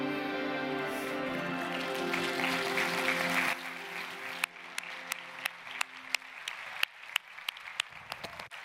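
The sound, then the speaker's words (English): A sustained swell of worship music fades out at Sanctus Church, then scattered claps from the audience follow, sharp and irregular, a few people clapping at an uneven pace rather than full applause. “Why am I clapping?”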